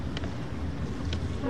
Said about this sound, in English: Here's a boat.